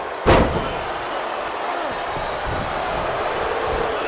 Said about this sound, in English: Guerrero now slams him down.